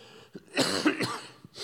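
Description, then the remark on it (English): A short fit of coughing: two or three rough, throaty coughs in quick succession, with a brief breath before and after and no talking. “I got to get my cough drop.”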